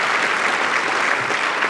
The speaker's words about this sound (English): Why don't we give them a round of applause for being three brilliant speakers.